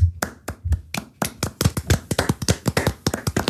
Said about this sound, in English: It came back to a round of applause. So. What's it for? So the round of applause was for Russell in P10. Oh, yeah. Well done, George.